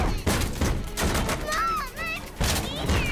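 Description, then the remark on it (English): Loud, heavy bangs land in an uneven series of hard impacts as someone pounds on a door, with raised, tense voices sounding between the blows. “Who's banging on the door?”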